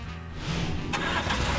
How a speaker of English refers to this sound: Sheriff Labrador and Mr. Wolf got into the police car, and they drove to the pond in the suburbs where Mr. Wolf had been attacked.